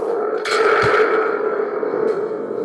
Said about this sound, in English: Thunder tube? Oh, I let's add the thunder tube. Where's that darn thunder tube when you need it?